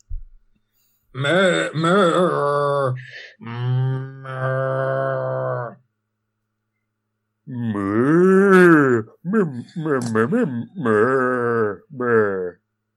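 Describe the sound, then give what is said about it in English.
Two men imitate cow moos: a few long, drawn-out lowing calls, a pause, then a quicker run of shorter moos with rising and falling pitch, loud. “Ask me a question in moos”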